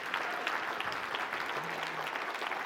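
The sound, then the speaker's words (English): A church audience applauds for the Lord after a prayer of salvation, with steady, dense clapping that holds at an even level throughout, with a faint low hum briefly running underneath. “Let's give the Lord a round of applause today.”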